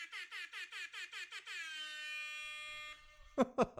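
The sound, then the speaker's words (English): An air horn sound effect blares in rapid repeated bursts, then holds one long loud sustained blast before cutting off, followed by a couple of sharp thumping hits. “Hit them with that air horn.”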